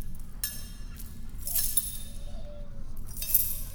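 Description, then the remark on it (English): Metal handcuffs being banged together clink and rattle in about four irregular bursts, bright and jangly with a faint ringing tail, over a low steady rumble. No one speaks. “Get these cuffs off of me. Stop banging them together.”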